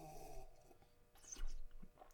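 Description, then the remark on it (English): Airy slurping as someone sips wine sommelier-style, drawing air through it to aerate it: a sharp hissing pull followed by a shorter second slurp, fairly quiet, with no talking. “No, you gotta like get the air in while you're sipping it.”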